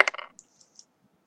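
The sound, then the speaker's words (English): Dice rolled for a perception check in a tabletop game clatter across a hard surface in a quick burst of rattling clicks, followed by a few faint, high ticks as they settle, then silence. “Could you roll perception? Okay, rolling.”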